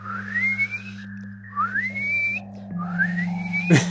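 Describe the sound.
A person whistles an imitation of the dolphin calls a research team transmits with a dolphin noise machine: three high, rising glides in a row, each sweeping upward, over a steady low hum, ending with a short sharp noise.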